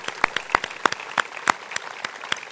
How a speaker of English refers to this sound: So, let's clap for all the people who came.